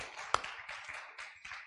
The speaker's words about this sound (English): Give a hand clap this afternoon. Hallelujah. Hallelujah. Glory to the name of the Lord.